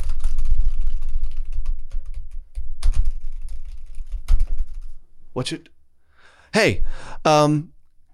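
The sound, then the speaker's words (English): Quick, irregular keyboard clicks of typing at a hotel desk while booking a room patter for about five seconds over a low rumble, then stop; a voice follows with a few short, exaggerated sliding vocal noises. “This is me typing, you know, okay.”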